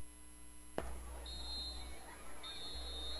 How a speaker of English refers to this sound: We got whistles and a timeout is called by the Kennett Indians.